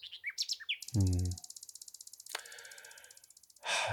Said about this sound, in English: There's a question you ask in the book. It's a big question and one that obviously haunts you a great deal. And that is, will the next generation be able to hear the Nightingales?